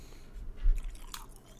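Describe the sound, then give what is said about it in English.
Someone chewing ice close to a microphone, with a few loud, crackly crunches and a heavy thump in the middle, over a low background hiss and no talking. “Drink some ice, bro.”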